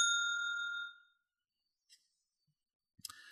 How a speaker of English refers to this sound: But here's a spoiler bell.